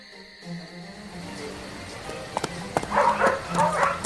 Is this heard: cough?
no